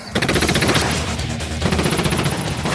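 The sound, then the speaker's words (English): Loud machine gun fire in two long, rapid volleys, each a dense rattle of shots over a steady low rumble, with no voices. “Short, controlled bursts.”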